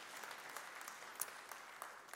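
A crowd claps steadily, many overlapping hand claps forming a soft, even patter of applause with a few sharper individual claps standing out, fairly quiet throughout.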